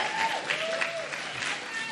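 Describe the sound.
An audience bursts into steady applause, a dense, even crackle of many hands clapping at once, with faint cheering voices mixed in underneath.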